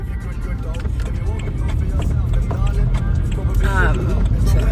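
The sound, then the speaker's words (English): Steady, loud low-pitched road rumble from inside a car moving in heavy traffic as it enters an average speed check zone, continuous throughout, with someone talking over the engine and tyre drone. “Traffic's appalling. Yeah, like, just entering average speed check zone.”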